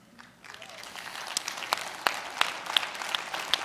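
Audience applause for the speaker's daughter builds from a soft start into a steady wash of many hands clapping, with a few sharper individual claps standing out above the dense patter.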